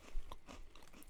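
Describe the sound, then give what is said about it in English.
Close-up crunching as someone bites and chews a crisp cookie, several sharp crackly bites in quick succession right at the microphone, with no talking. “We're all crunching in the mic.”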